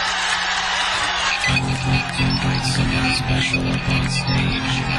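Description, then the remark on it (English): A loud, steady roar of a crowd cheering and hollering at Mr. Dan's live performance in Boring, Oregon, with a low sustained hum joining in after the first second or so. “They love him. Listen to that crowd.”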